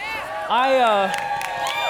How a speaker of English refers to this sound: You don't know who I am. Why are you cheering? I may be the worst speaker of all time, and you're cheering, so that's great.